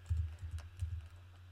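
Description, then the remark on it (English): Soft, irregular clicks of someone typing on a computer keyboard to look something up, a handful of keystrokes over a low steady hum, fairly quiet, with no voices. “I'm typing here.”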